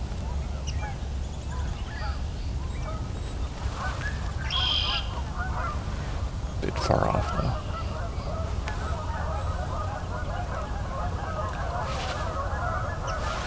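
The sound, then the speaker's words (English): A flock of stirred-up Canada geese honks continuously, a busy, overlapping chorus of agitated calls over steady outdoor background noise, with a brief spoken remark partway through. “Well, canvas geese are stirred up quite a bit.”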